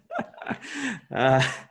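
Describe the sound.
A child yawns, a few short breathy vocal sounds leading into a long, drawn-out voiced exhale that rises and falls in pitch, clear and close enough to hear plainly.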